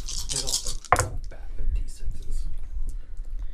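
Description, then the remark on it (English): Dice rattle and clatter across a table, with one sharp knock early on followed by scattered light clicks and rustling. Faint murmuring voices sit underneath. “Here, here's dice. Dice. We'll start with that.”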